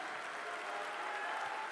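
An audience claps steadily, many hands blending into a dense, continuous wash of applause at an even, fairly loud level for the whole stretch, with no voices standing out.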